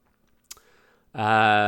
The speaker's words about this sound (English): Let me click on it. I'm doing a lot of clicking today.